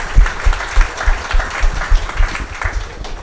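A crowd bursts into steady applause, dense overlapping claps filling the room at close range, sustained and fairly loud throughout with no one speaking.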